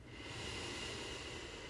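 A deep inhale through the nose during a deep diaphragmatic breathing exercise, a steady airy rush of breath held for nearly two seconds, fairly soft, with no talking.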